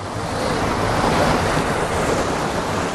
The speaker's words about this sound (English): I can't believe at this waterfall, with the water running as fast as it is, there's so many sharp rocks.